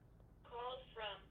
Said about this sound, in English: I do apologize. I don't know if you can hear the phone ringing. That's the house phone, but I'm going to have to let it go to voicemail, and I will call them back.